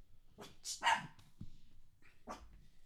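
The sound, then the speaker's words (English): Dogs bark in a studio in a few sharp, uneven bursts, with a quicker pair of barks near the start and another single bark a moment later, moderately loud with no talking. “The dogs are in the studio.”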